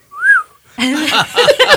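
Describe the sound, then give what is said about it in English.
Someone whistles one short, clear note that swoops up and back down, imitating the whistle of a greeting card with an alligator on it that made the noise when opened, then a person immediately starts talking. “I guess it opened and made that whistle noise.”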